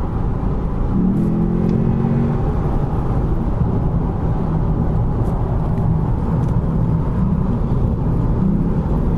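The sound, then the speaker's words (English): A Lexus car's engine accelerates hard as traffic opens up, its revs climbing in a rising whine over a loud, steady low rumble of road and traffic noise, with no one speaking. “But now the traffic's opened up a bit, so I'm just going for a little pop.”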